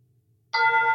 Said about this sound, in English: the app has a chime that suggests that I'm being called to pray by a country bell or a bell in a monastery.